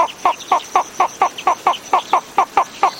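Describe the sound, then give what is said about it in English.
A slender-billed flufftail of Madagascar calls in a steady series of about a dozen sharp, evenly spaced notes, roughly four per second, clear with no talking. “Now listen to the slender-billed flufftail.”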